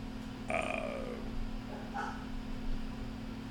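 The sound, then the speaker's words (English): A dog gives a couple of short, yelping barks, one near the start and a softer one a second later, over a steady low electrical hum. No one speaks. “Talk to me about Jon Moxley while I go take care of this dog.”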